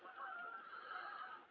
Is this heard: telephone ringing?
no